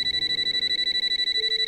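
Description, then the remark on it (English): A telephone rings in a horror movie with a steady, high-pitched electronic trill, pulsing rapidly and evenly throughout, with no voices over it. “And he hangs up, goes to the Jiffy Pop, and the phone rings.”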